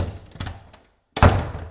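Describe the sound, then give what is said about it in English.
A door shuts with a solid thunk after a brief silence, preceded by softer clattering taps as it swings and settles. No one speaks. “When you say door close, you can do this.”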